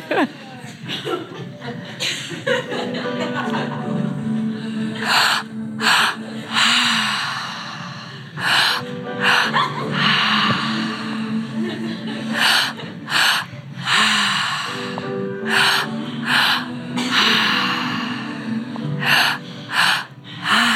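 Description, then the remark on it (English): Many people doing an active breathwork session with eyes closed breathe forcefully and rhythmically together, a dense chorus of sharp gasping inhales and loud exhales, with occasional sighs and snorts, continuous over a low background drone. “Just a handful of minutes of active breath more.”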